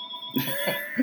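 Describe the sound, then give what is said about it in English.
A bell rings with a steady, sustained metallic tone that lingers throughout, while a few short, rough bursts like coughs or throat clearing break in over it. “Well, that bell signifies that the podcast is nearly over, as does that.”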